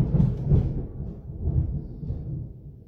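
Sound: thunder rumbling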